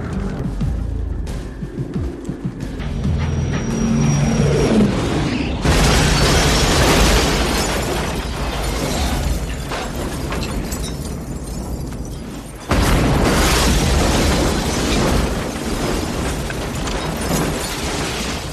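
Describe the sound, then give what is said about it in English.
A car is violently wrecked in a loud, chaotic movie action sequence, with two sudden roaring blasts of crashing, tearing noise followed by sustained rumbling and debris, and no talking. “Oh yeah, that you want to see that car destroyed, and it's a glorious scene when it does happen.”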